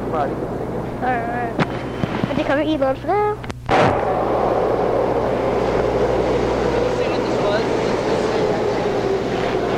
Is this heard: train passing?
yes